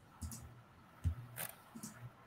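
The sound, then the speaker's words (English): A handful of soft mouse clicks, clicking through slides, spaced unevenly over a couple of seconds, faint with no one talking. “Yeah, animations are passed again, so we're just going to go clicking through.”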